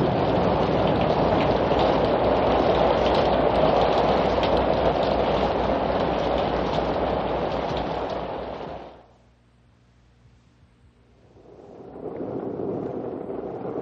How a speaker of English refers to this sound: Listen. Listen. Rain. Rain. Cool water. Cool air.